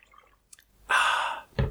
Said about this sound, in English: My throat hurts from doing the Philbert voice. I'm gonna take a sip of my water.